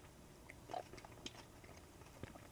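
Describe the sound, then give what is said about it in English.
Chewing a milk chocolate candy with small pieces of crunchy honeycomb: a few crisp crunches and clicks spread over a couple of seconds, quiet and wet-sounding, with no talking. “No, this one's, it's just got a few small pieces. Little pieces of crunchy in there. Yeah, I didn't know it was honeycomb.”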